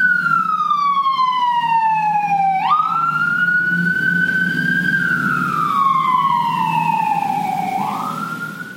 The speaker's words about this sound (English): Playing with the siren again. right down the street. Of course.